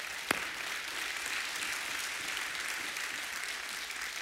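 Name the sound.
audience applauding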